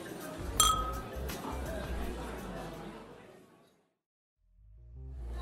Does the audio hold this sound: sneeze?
no